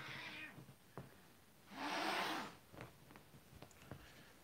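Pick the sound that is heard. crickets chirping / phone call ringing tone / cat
cat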